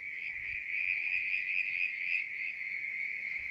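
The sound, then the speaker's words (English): A steady, high-pitched trilling chorus of frogs calling together at a mountain tarn, a lake in the mountains, unbroken and fairly loud throughout, with no voices and only a faint low rumble beneath. “The tarn is like a lake in the mountains, and these are the frogs.”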